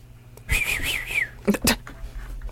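A single shrill, trilling whistle blast rings out for under a second, followed by two short, sharp bursts of noise. It is fairly loud, with no talking.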